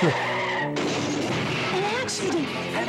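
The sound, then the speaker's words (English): A car skids with a long, loud tire squeal that cuts off abruptly, followed by a rumbling crash and continued noisy commotion; a car accident with a child in the car. “An accident. The humans had an accident. There was a child in the car.”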